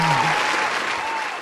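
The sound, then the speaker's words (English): A burst of dense clapping from a group fills the moment, steady and fairly loud throughout, with a faint voice murmuring underneath at the start. “No need for applause, guys.”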